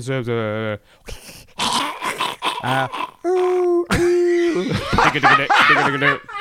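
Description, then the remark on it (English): A person imitates guttural howling, letting out a series of loud, rough vocal howls and growls, broken up by snickering laughter-like bursts and one long sustained wail. “Minor howling. That's minor howling.”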